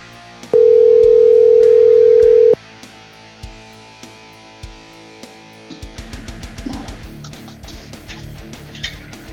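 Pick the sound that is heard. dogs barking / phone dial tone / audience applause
phone dial tone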